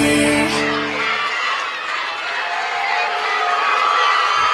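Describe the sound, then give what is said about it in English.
A large arena crowd at Garrett Coliseum applauds and cheers as the Aggies take the floor, in a steady, loud roar of clapping and voices lasting several seconds, with a brief musical tone fading out at the very start. “Aggies take the floor to an applause.”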